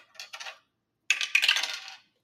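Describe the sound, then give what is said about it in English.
Dice clatter down a dice tower in two bursts, a short rattle followed by a longer, tumbling cascade of hard clicks that quickly stops, with no voices; the dice are rolled to pick random questions. “I have a dice tower behind me. I've got 8 random questions for you. And whatever 3 things I roll for you, that's where we start.”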